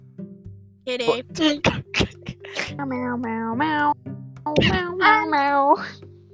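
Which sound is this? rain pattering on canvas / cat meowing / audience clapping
cat meowing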